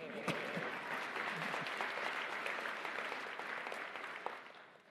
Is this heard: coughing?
no